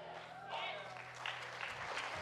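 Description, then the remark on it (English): An audience gathered in church claps their hands together in a dense, steady patter of applause, with voices and cheering mixed in throughout. “Come on, everyone, clap your hands.”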